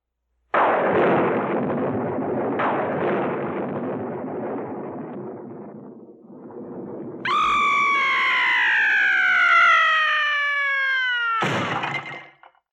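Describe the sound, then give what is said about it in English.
A thunder sound effect: a sharp crack and a second burst, then a long rolling rumble that fades. It ends with a loud, high, wailing scream-like tone that slides downward, with no talking. “The delay between the sound of thunder and the light from the flash is due to the distance between you and the bolt.”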